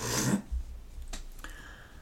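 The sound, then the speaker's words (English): A yawn from someone trying to stay awake: a loud, breathy rush of air that fades quickly, followed by faint clicks and quiet breathing. No one speaks. “That was a lot of me yawning, trying to stay awake.”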